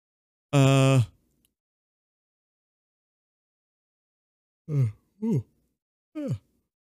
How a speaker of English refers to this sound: Oh my gosh. The yawns keep coming in.